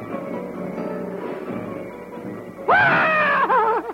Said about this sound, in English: What was that? Who's doing all that yelling?